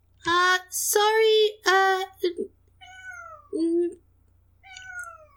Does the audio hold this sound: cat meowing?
yes